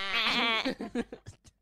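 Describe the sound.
A person imitates a goat's bleat: one long wavering, nasal bleat that trails off into a few short stuttering pulses, fairly loud with no other talk.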